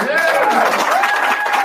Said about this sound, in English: But it was one of these fools clapping for that shit.